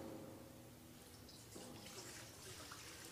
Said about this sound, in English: will you help me now as we pour the water into the bowl? Grab the pitcher.